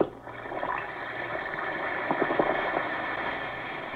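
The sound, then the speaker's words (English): An Alka-Seltzer effervescent tablet fizzes in water, a steady hiss threaded with tiny crackling pops and a few brighter bursts of bubbling, with no voices over it. “Listen to it fizz.”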